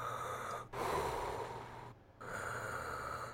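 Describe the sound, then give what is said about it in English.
A voice imitates snoring: three rough, noisy breaths in a slow rhythm, each a long rasping draw separated by brief pauses, with no words spoken. “the sound of something like snoring a little bit.”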